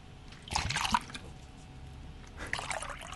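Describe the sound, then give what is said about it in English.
Tea being poured out of a cup in two short splashy bursts, a brief trickling gush, a pause, then another quick pour, moderately quiet with no one speaking. “I've poured it into her brain.”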